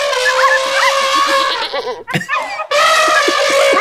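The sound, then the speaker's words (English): A goat bleats in long, loud, strained cries, one drawn-out call, a short ragged break with a sharp burst, then another sustained bleat, with no talking. “Okay, maybe a goat with an elephant?”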